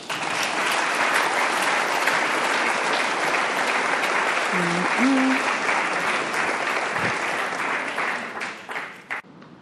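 An audience applauds in a dense, steady wash of clapping for nearly ten seconds, with a brief voice rising through it midway, before the clapping thins out and fades at the end.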